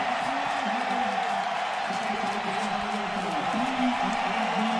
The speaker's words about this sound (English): to revel in the, to just bathe in the crowd noise. It's the first time we've had it.